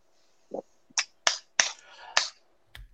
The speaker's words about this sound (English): I hear someone clapping. I don't know who that is, but no, I'm sorry. It's me.